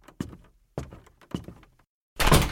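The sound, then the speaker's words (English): A bedroom door is shoved shut hard with a few heavy thuds and rattles, followed by a brief loud burst of noise as it closes firmly and is locked, without any talking. “I shut my door hard behind me and locked it immediately.”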